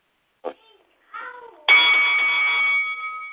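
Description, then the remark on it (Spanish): A bell is struck once to start the round, loud, its bright metallic tone ringing on steadily for nearly two seconds. A few short, faint squeaky vocal-like sounds come just before it. “El sonido de la campana.”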